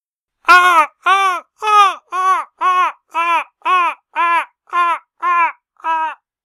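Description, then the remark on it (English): A person imitates a seagull with eleven loud, evenly spaced, nasal cries, each rising and then dropping in pitch in a steady squawking rhythm, with no other talk. “Is that a seagull? Yes, it was.”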